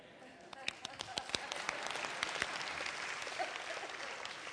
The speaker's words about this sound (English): Yeah, very weak. That was a PGA clap.